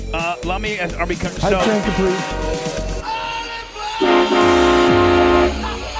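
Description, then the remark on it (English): Upbeat Hype Train music plays loudly and continuously, with choppy melodic bursts early on that give way to long, horn-like blaring tones resembling a train horn or whistle. “I like having the Hype Train music just playing all the time.”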